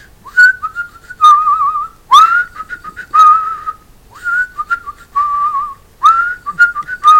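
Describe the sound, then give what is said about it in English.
A person whistles a short, bouncy tune, imitating the tune whistled by the character Tom, played by Richard Briers, in several quick phrases separated by brief pauses, clear and fairly loud with no talking. “Okay, so the character Tom, played by Richard Briers, would whistle this little tune.”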